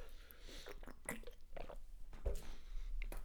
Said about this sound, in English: I had to take a sip of water on that note.